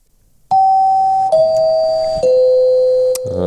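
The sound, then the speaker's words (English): A doorbell-style chime used as a timer rings three sustained, descending tones, each held nearly a second, clear and fairly loud with no talking over it, before a brief clatter at the end. “That is the timer for when we have spent longer talking about the episode of Bones than the episode of Bones went for.”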